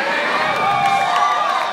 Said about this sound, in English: Do you hear the applause, though, when we mention Nelson?